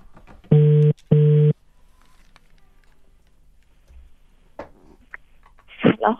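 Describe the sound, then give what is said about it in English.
A telephone ringback tone sounds twice in a steady, loud double burst during an outgoing call, followed by quiet line noise and then a few brief faint rustles and voice-like sounds. “Right, it's ringing.”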